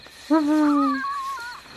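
A single deep, drawn-out owl hoot followed by a softer, wavering second note, clear and fairly close, from a spotted eagle owl in a nearby tree as the moon rises, with a faint steady hiss behind it.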